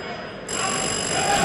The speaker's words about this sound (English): When you are ready to solve the riddle, you must attract my attention by ringing your bell. May I hear your bell, Presbyterian boys?